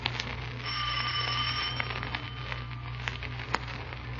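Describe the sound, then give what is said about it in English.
The doorbell of the dealer's house rings with a bright, sustained tone lasting a second or so, moderately loud over a steady low hum, followed by a few faint clicks and taps. “Ring the bell. Don't hesitate, Markheim. Ring it.”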